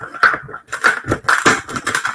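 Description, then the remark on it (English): A pen, used in place of scissors, jabs and rips through packing tape on a package, a series of scratchy tearing and crunching bursts in quick irregular succession. “I don't have my fucking scissors, so I'm using a pen. I hope it works. That didn't sound good.”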